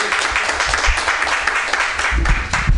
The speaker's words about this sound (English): Big round of applause for all the ladies, including me.